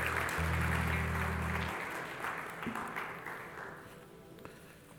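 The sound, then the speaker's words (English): Dense applause for the worship team from an audience at a Kurt Landry Ministries service at House of David, loud and steady at first with a low sustained tone beneath it, then thinning out and fading over a few seconds. “Let's give the worship team a hand clap.”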